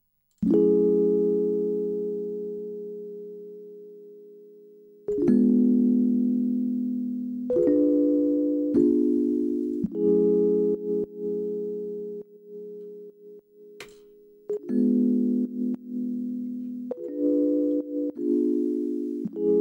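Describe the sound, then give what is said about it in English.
Mellow Rhodes electric piano chords ring out alone, without sidechain compression or high-pass filter, the first held long and slowly fading, then a series of shorter chord changes follows in a relaxed, steady progression. “I added a high-pass filter to take out some of the bottom end of the Rhodes so it doesn't interfere with all the other low frequencies within the track.”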